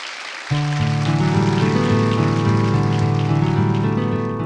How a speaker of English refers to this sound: So if you'd join me in giving the two speakers a round of applause.